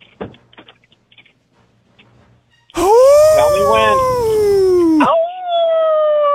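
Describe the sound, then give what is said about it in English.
A person loudly imitates a wolf howl, a long, wavering, sustained cry that rises and falls, then breaks into a second howl. Faint clicks and quiet come first. “Best wolf howl.”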